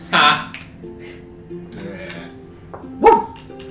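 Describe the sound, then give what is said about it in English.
A dog named Lupa barks twice, loud: one sharp bark at the start and another about three seconds later, with quieter sounds and faint voices in between. It barks at someone peeling bark from a tree. “You're able to start peeling some of the bark, and Lupa actually starts barking at you.”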